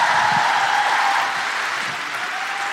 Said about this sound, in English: Please keep that incredible applause going for a guilty feminist favourite. She's taking us out to the interval.